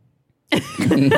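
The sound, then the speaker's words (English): After a brief silence, a loud, raspy horn honk blares out and holds for most of a second, its tone brassy and buzzing with a slight wobble in pitch. “Honk.”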